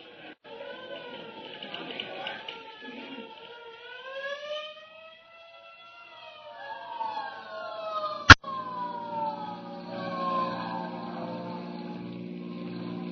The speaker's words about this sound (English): Hey, there's a hook and ladder on the street right now. It must have turned the another alarm.